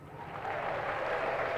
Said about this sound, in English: What is that noise? They are clapping their hands because you did something well. You impress them with your knowledge.